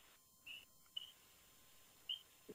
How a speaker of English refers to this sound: I can hear the birds.